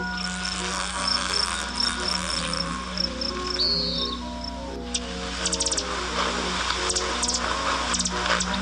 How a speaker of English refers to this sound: The Calliope hummingbird, Celasphorus calliope. Today's Talking Birds featured feathered friend.